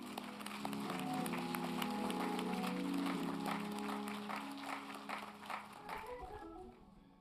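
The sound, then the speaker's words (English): A church audience applauds the women of the program steadily for several seconds, a dense wash of clapping over a low musical hum, then the clapping thins out and fades toward the end. “Let us begin by giving all these beautiful women a round of applause.”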